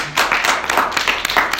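An audience applauds at the end of a convention session, with many hands clapping in a dense, steady crackle that stays fairly loud and even throughout the short clip, with no voices.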